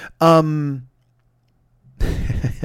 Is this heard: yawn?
yes